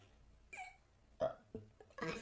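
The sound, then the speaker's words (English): A few short, soft burps come in quick succession, small gulping belches spaced about half a second apart, with no talking. “I gotta burp. I feel it's right in there, man. It's gotta come out.”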